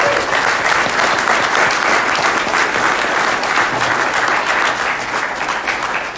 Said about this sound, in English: Well, we want to thank you all. First of all, let's give you a round of applause for coming.